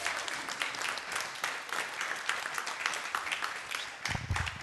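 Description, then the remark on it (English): Steady audience applause welcoming a speaker invited up to talk from the Bible, a dense wash of many hands clapping at an even level throughout, with no voices speaking over it. “Why don't we give him a big clap, and he's going to speak to us.”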